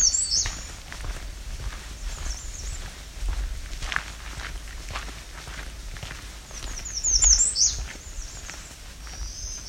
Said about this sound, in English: American redstart and a black-throated green warbler.